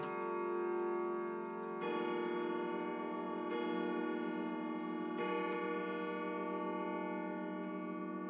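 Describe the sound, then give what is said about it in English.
A clock in a publishing company's offices chimes three o'clock with rich, resonant bell strikes spaced evenly about two seconds apart, each tone ringing on and overlapping the next before slowly fading, with no voices. “As the clock chimes 3 in the offices of Badger Yates Publishing,”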